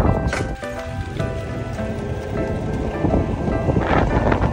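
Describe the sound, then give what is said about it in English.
Strong wind blows steadily outdoors in Amsterdam, a loud rushing roar with low buffeting rumble that never lets up, with no one speaking. “Kind of windy.”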